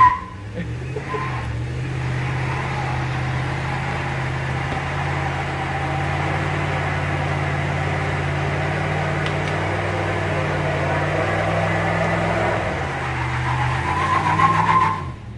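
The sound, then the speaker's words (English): The engine of a car used for racing rumbles steadily, its low drone holding for most of the time before climbing in pitch and loudness as it revs and accelerates near the end. “that was not a client's car, just for the record.”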